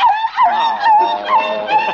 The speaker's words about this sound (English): I'm giving this Pekingese a bath.